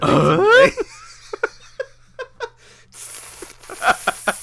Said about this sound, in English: That's supposed to be a sizzle. That's supposed to be like everyone's like, "The fuck is that noise? Is there snakes?"